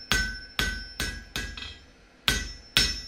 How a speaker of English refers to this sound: When dawn broke, the smith woke and thought he'd dreamt the whole thing, until he felt the handle of the hammer curled tight in his grip. He then got to his feet and set to work.